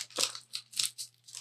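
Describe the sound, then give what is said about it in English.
A stack of trivia cards being shuffled, several quick papery riffling bursts in an uneven rhythm, fairly quiet, with a low steady hum in the background and no voices. “He's going to shuffle them.”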